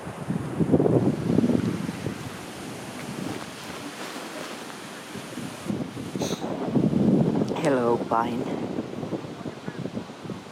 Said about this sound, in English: It's a windy day, a windy evening, so I come close to you to have some protection.